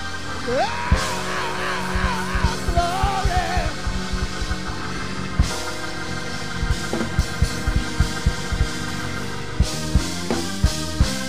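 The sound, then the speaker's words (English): A church audience shouts glory and hollers with rising, wavering whoops over loud, steady drum hits and music, the cries strongest early and the clamor sustained throughout. “I know there are folks who say it don't take all of that hollering and screaming.”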